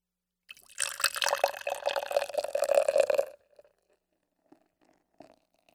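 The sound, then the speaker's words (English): IPA beer pours steadily into a glass for about three seconds, a bubbly gurgling stream with a rising pitch as it fills and leaves a lot of head, followed by a few faint clinks and fizzing settles. “Delicious IPA. Let's pour this motherfucker.”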